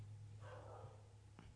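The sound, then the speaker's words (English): A dog in the building barks faintly, muffled as if through walls, with a brief second yip near the end over a steady low electrical hum. No one speaks. “Dog in our building.”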